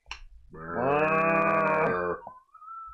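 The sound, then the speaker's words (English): A loud, drawn-out moo voiced by a person imitating a cow, one sustained nasal call of nearly two seconds that swells and then cuts off abruptly. “Because I want, like, necking cow. I think you know what the sound would just be.”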